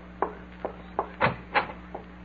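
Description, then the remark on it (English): A front door being opened, heard as a quick series of short, dull wooden clunks and clicks, with no voices. “They're here. You open the door for them.”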